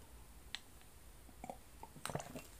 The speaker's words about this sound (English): Peppermint tea. One more sip and I'm done. There we go.